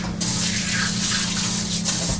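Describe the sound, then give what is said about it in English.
A faucet runs steadily with a broad rushing hiss of water as someone washes their hands, continuous from just after the start to the end, with a low steady hum underneath and no talking. “I'm going to wash my hands.”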